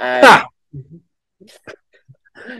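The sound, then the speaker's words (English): A single loud, sharp sneeze bursts out at the start, followed by a few faint, scattered vocal sounds and quiet murmurs. “Bless you.”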